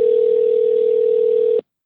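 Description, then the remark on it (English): A steady, loud telephone dial tone hums continuously for about a second and a half as a phone call is being placed, then cuts off abruptly into silence, with no voices present. “I'm going to get Jared on the phone.”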